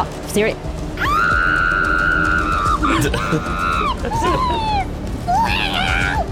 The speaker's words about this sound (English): I'm also in the background, screaming.